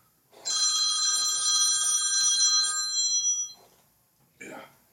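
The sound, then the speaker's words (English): An enormous red telephone rings loudly and steadily for about two seconds with a bright, buzzing electronic tone, then cuts off; faint voices murmur underneath and a brief voice follows at the end. “For those of you who can't see, it's an enormous red phone which is ringing.”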